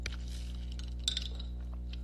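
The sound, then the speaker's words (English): A brief, bright glass clink as someone takes a sip rings out around the middle, with a few softer taps and knocks before and after over a low steady hum. Nobody speaks. “I'm just going to have a sip of...”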